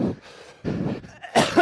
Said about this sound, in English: Despite the fact we've been coughing constantly.